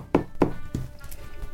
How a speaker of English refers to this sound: The next morning arises and everyone wakes up. There's a knock on the door in your room.